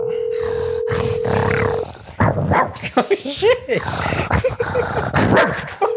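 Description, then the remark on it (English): A man imitates a Rottweiler's deep, gruff barks and growls, a series of loud, rough woofs with a steady hum underneath. “That sounds like a fucking Rottweiler, dude.”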